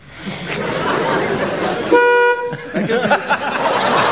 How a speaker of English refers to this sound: Give me a chance to introduce my buzzer, with which I shall censor anything which doesn't read my approval.